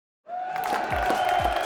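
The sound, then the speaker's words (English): A large crowd murmurs and calls out in a sustained, dense wash of voices, with a few shouts and whoops rising above the steady din after it starts abruptly. “I think the crowd might be finding it a bit too on the nose, sir.”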